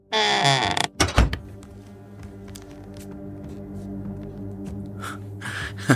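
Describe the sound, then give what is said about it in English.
A door creaks as it swings, then shuts with a solid thud about a second in, followed by a quiet, low hum in the room. Nobody speaks. “You want this door? Closed.”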